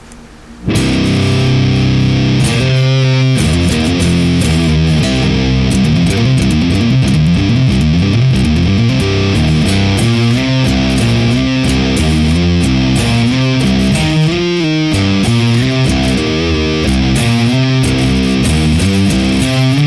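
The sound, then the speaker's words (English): Heavy, saturated electric guitar with thick crunchy distortion, played through a Cortex amp modeler with level and drive maxed, voicing to the right, into a Mesa Gargantuan cabinet, plays a continuous riff of chugging low notes and sliding chords, loud and dense throughout with no voices. “Check out what the Cortex did to this.”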